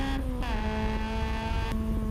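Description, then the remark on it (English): A car engine heard from inside the cabin, a loud, steady harmonic drone that drops slightly in pitch, holds, then jumps back up near the end, with no voices. “So now we're listening to the car. Sounds like a video game.”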